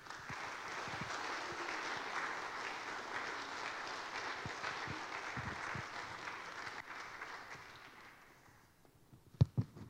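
Sustained applause from the audience at North Haven Church welcoming a speaker to give the message, a dense crackle of many hands clapping steadily for about eight seconds before thinning out and fading, followed by a couple of sharp thumps at the end.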